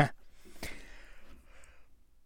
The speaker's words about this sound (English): I was about to sneeze and then I had a yawn. It was weird.